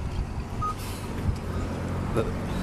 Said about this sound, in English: Here, recording from bustling downtown Brampton. Okay, that bus is...